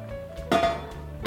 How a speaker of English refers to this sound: So I'm just gonna place the lid and bring the soup to a boil so that all the flavors really start to come together.